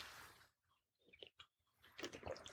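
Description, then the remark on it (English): Quiet mouth sounds of someone taking a sip of water, a few soft slurps and wet swallows with brief pauses between, no talking. “Got to stop and have a sip of water.”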